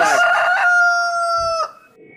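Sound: rooster crowing sound effect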